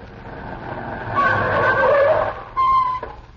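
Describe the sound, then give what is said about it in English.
A chauffeur-driven car's engine rumbles, then tires squeal in a long skid as the car brakes, ending with a final sharp screech as it comes to a stop. No one speaks. “Kurt, stop the car!”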